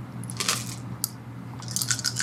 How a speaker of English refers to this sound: She's also rolling more dice.